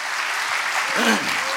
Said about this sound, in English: Turn around to somebody and clap for them and say, I'm glad you're in church.